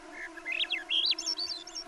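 Summer songbirds sing a quick run of bright, rising-and-falling whistled notes, continuous, over the steady thin droning whine of mosquito wings, in a mosquito-filled thicket in the Brooks Range of northern Alaska on a summer afternoon.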